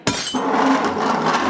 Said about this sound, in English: I pick up my rag, fill the glass with sand, and scratch the hell out of it.